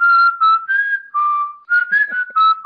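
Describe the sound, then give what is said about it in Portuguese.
Someone whistles a tune alone: clear, pure notes that step up and down in pitch across several short phrases, separated by brief pauses. “Todo desenho eu tô lá assoviando.”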